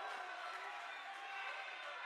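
A crowd of Kearney Catholic fans applauds in a basketball gym during a game against Minden, a steady, dense wash of clapping and murmuring voices without a break for the whole couple of seconds.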